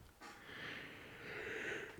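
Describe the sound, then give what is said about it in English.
A person yawns, a long, breathy, drawn-out exhale lasting about two seconds and swelling slightly toward the end, with no talking. “Don't yawn. You can't yawn already.”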